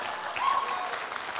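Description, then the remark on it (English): An audience applauds the speaker's wife as she comes to join him, in a dense, steady wash of clapping that holds at an even, moderate loudness throughout, with a brief faint whistle-like tone partway through. “I don't even get people clapping for me.”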